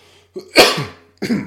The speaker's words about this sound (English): I still got a little bit of a cough.